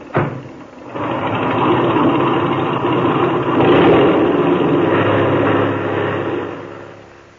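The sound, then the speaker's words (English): An airplane motor is opened up with the brakes set, ready for takeoff. It roars up after a brief sputter, holding a steady, loud, buzzing drone with a slight swell in the middle before easing off at the end; no one speaks. “Open that motor, and when I wave to you from the outside, take her off.”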